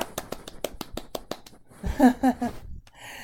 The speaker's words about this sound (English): Yay. Round of applause.